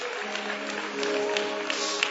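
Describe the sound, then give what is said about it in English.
An audience claps their hands for the Lord in a dense, steady wash of applause lasting a couple of seconds, with sustained musical tones humming underneath and no voices. “Come on, give the Lord a hand clap for that.”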